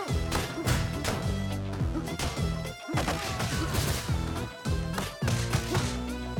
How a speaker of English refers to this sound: So as soon as you go right, a car crashes into a brick wall behind you and blocks the path forward.